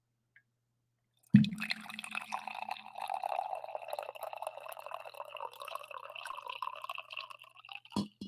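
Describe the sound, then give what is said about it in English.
Coffee pours steadily into a cup for several seconds after a soft knock, the splashing stream rising in pitch as it fills, with slight spillage, then a small clink at the end. No one speaks. “Just get right to the coffee pour?”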